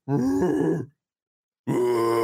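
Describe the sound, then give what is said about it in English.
A person imitates a grizzly bear with two deep, rough growling bursts, each under a second long, separated by a short silence, loud and guttural with a raspy vocal tone. “Everybody that's in the comments right now, type your phonetic pronunciation of a grizzly bear.”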